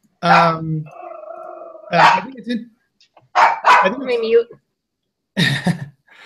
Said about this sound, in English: Holly has some barking dogs here. I think it's her dogs are barking.